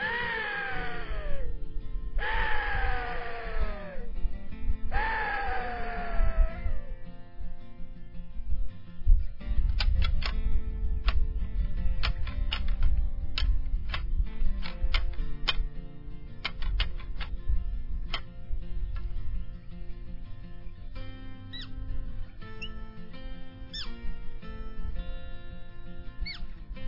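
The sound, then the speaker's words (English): A hunting guide calls in axis deer: three drawn-out, descending calls in quick succession, clear, followed by a long stretch of sharp, irregular clacking and rattling of antlers to rattle up the deer, over a low rumbling background. No one speaks. “calling and rattling up axis deer.”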